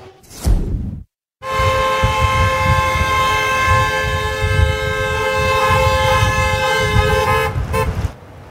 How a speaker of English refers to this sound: In the Okanagan, groups of vehicles headed from Vernon all the way to the Osuyas border this afternoon. Honking could be heard throughout the region. Hundreds of vehicles held up traffic